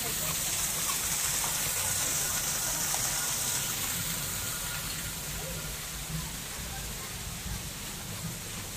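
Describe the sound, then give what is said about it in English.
A waterfall's rushing water roars steadily for the whole stretch, a dense continuous hiss that never lets up, with faint indistinct voices murmuring underneath. “Backside of water.”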